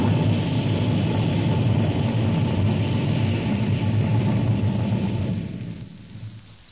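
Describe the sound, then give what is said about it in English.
A flying saucer, a domed disc, descends over the mall in Washington, D.C., and lands on the grass with a loud, dense, steady roar and a low hum, which drops away into near quiet in the final second. No one speaks. “Burning down through the sky over Washington, D.C., hovering over the mall. Descending.”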